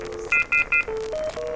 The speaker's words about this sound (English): The Phonal Tonal app has a bunch of really fun stuff. It's got information tones. That's, you know, that one. That's different. They're all different little information tones. They're all different.